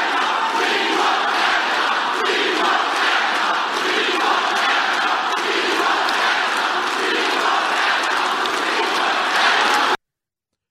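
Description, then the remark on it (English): A huge crowd at a President Trump rally in Mississippi roars and chants "We want Kavanaugh" together in a steady, loud wall of voices that holds unbroken for about ten seconds, then cuts off abruptly. “So that's a massive crowd, energized by President Trump.”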